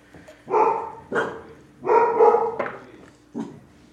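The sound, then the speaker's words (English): Dogs bark in a quick, irregular series of about five loud barks, some overlapping as one sets off another, with no talking. “Your dogs trigger one another.”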